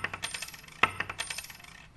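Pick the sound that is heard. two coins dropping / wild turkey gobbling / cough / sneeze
two coins dropping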